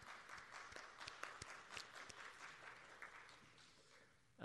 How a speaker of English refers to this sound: I think it was I like the way of a performing arts crowd here. We're applauding for the presentation. It was well delivered.